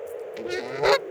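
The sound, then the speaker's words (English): Several geese honk in quick succession, harsh nasal calls overlapping, with the last honk louder than the rest. No one speaks. “And then suddenly the squawking intensifies. The barks, the shrieks.”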